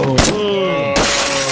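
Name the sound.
glass shattering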